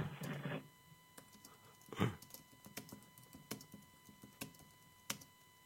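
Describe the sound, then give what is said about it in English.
Keys tapped on a keyboard as someone types text into a text-to-speech tool: sparse, irregular clicks spaced out over several seconds, fairly quiet, following a short rustling burst at the start. No one speaks. “is typing something in the text of speech.”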